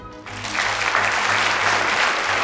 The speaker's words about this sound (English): And with all of you here, I'm tempted to start out with a quick poll by applause to get you to clap in answer to this question. How many of you here actually had breakfast this morning?